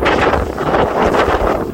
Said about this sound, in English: It's a little bit windy, honey. It's a dog walk in the North Pole. Listen to that howling wind.